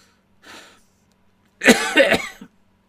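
A short breathy intake followed by a loud, close burst of harsh coughs, three or four hacks in quick succession, with no talking.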